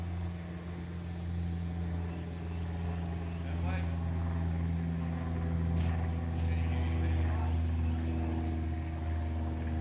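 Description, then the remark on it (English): An airplane drones steadily overhead, a low, humming engine rumble with layered tones that holds at a fairly constant loudness for the whole stretch, with no voices. “We have to wait for the airplane to get by.”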